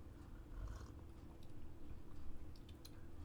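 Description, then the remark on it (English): Wet slurping of a thick, creamy drink made with organic soy milk, a continuous sipping with small squelchy mouth sounds and faint clicks, heard alone without talking. “Because listen, I'm going to slurp too.”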